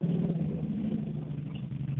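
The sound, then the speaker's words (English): A motorcycle starting up in nearby traffic: its engine rumbles steadily with a deep, throaty drone that holds at an even, fairly loud level for about two seconds, with no one speaking over it. “Sorry, we got traffic around us. Keep talking. Well, yeah, yeah, I had a motorcycle starting up.”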